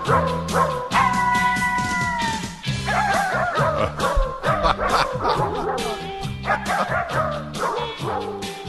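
A dog barks and yips over and over in a loud, steady run of sharp calls, with a few drawn-out whiny notes near the start and no voices.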